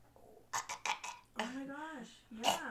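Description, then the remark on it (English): A voice imitates a phlegmy hacking cough: several quick, rough bursts, then a drawn-out gravelly groan and one final harsh hack, all fairly loud. “Because that's the sound of him coughing.”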